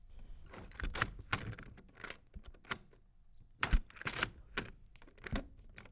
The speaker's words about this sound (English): That sounds like the lock on a door. That is correct. Yes, that was a handle and a lock on the door.